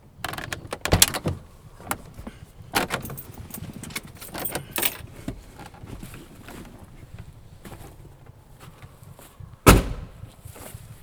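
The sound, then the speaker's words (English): Someone climbs out of a truck: keys jingle and clothing shuffles among scattered clicks and knocks, then a single loud door thunk near the end. No one speaks. “I think I'll get out of my truck.”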